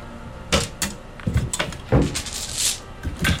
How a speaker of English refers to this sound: Okay, well, I can roll it in. This could be my mini little dice box. There, just to use.